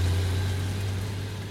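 vehicle, truck engine running

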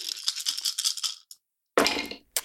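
rolling dice

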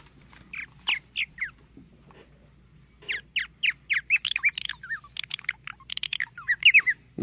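bird, purple martin call

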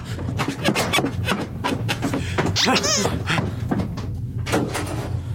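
household object, door being pulled open

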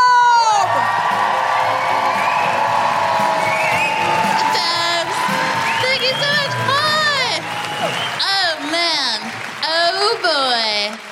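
crowd, audience cheering

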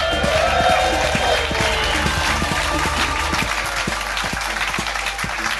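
crowd, theatre audience applause

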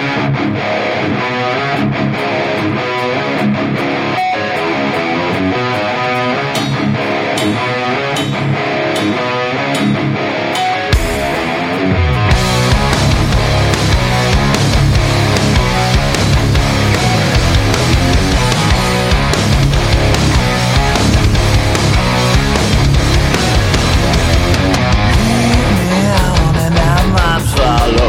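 rock song played

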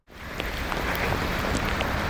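nature, torrential rain pouring down

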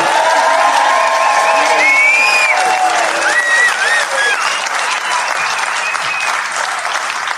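crowd, audience applause and cheering

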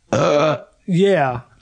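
human body sound, burp

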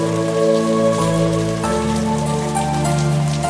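nature, heavy rain

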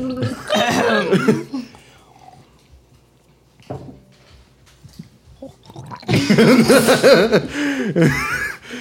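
human body sound, person gargling water

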